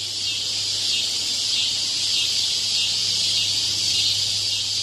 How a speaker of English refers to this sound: You know the cicada. Do you love them? Do you hate them?